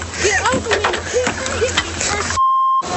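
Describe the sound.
A single steady electronic beep, loud and clean, lasting about half a second, cuts in sharply after a stretch of busy, overlapping voices and background noise.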